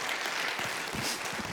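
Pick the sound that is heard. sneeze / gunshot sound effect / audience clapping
audience clapping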